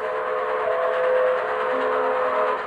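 A train whistle blows in one long, steady, loud chord of several pitched tones, layered over the broad rumble and hiss of a moving train, with no voices.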